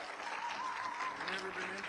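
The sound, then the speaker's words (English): Steady audience applause welcoming a comedian to the stage, a dense wash of many hands clapping at an even level throughout, with faint voices and a few whoops mixed in. “Yeah, well, we're giving an applause now in case at the end you think it's rubbish and you don't want to clap, so.”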